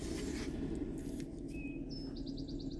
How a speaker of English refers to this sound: I hope you can hear those birds.